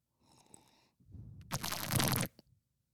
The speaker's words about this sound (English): Guys, let's normalize slurping water into a microphone.